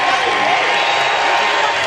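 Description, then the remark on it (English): A stadium crowd at a tennis match applauds and cheers in a steady, dense roar, loud and continuous throughout, with a blur of indistinct voices mixed into the clapping. The crowd is applauding Wu after he wins his match against Munar. “Well, Wu deserves the applause and the cheers, and he deserves his moment of victory.”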